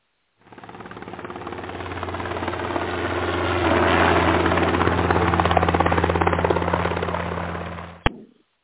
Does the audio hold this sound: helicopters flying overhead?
yes